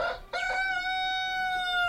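A rooster on a chicken farm in Uganda lets out one long, loud crow, the drawn-out call holding steady for over a second after a brief scratchy squawk. No one speaks.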